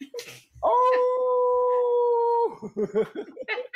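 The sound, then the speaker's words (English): A man lets out a long, sustained wolf-like howl, holding a steady pitch for nearly two seconds, framed by brief bursts of speech before and after. “And what I like to refer to as one of my new co-pilots, he brings the male perspective and all the howling and all that other stuff he does.”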